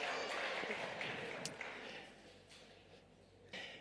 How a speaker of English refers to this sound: Thank you. Cheers, bro. Big round of applause for Rory.